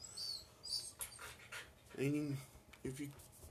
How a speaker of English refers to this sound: And of course, my dog Jack is scratching himself, crying.